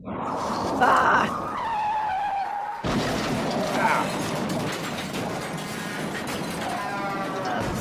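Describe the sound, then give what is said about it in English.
A car's high, wavering tire screech runs for a few seconds, then a sudden loud crash breaks in, followed by ongoing rattling and clattering debris that stays loud until the end. “No, no, no, hit the brake.”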